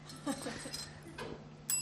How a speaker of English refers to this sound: Gonna get a better bell.